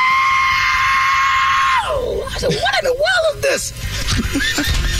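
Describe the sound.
A voice imitates the screech of a crashing F-35 fighter jet: a sustained high whistling tone that suddenly drops in pitch, then wavers up and down in shrill, wailing glides. Fairly loud.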